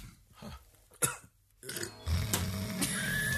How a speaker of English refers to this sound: I almost burped up a donut. I didn't even eat one.